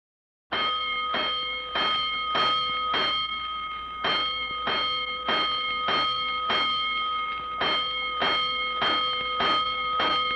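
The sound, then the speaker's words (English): A fire alarm bell clangs loudly and steadily, five bells signalling a five-alarm fire, a long series of evenly spaced metallic strikes ringing out with no voices, each stroke overlapping the next's lingering tone. “Five bells.”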